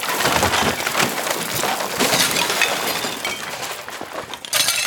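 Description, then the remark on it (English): A stool in a closet, tipped over by a foot during a high kick, knocks over a towering pile of brightly colored hats that tumble out of the closet in a loud, continuous clattering crash, with rattling, splintery knocks and scraping tumbling on for several seconds and no voices. “As she finished a twirl with a high kick, her tiny foot hit against the stool in her closet and it tipped, knocking against her towering pile of hats.”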